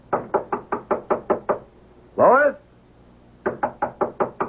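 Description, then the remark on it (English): A steady run of about eight sharp knocks on an apartment door pauses while a man calls out once. Then another quick, fairly loud series of knocks follows. “Come on, open the door.”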